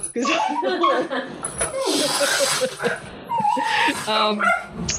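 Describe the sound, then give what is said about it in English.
A dog named Dougal barks and yips repeatedly, loud and agitated, startled by somebody outside, with a few whimpering notes mixed in while voices talk over the commotion. “Dougal got startled by somebody outside.”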